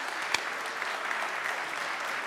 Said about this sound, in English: Why don't we just give a round of applause to everyone that made it happen.